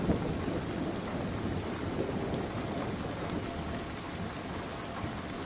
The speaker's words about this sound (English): Would you like some rain? Here's some lovely rain for you.